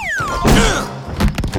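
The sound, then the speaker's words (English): A microphone is knocked about by a pet crow named Thorn and drops with a loud thud, followed by a few smaller bumps and rattling handling noises. “Bad crow, drop the mic.”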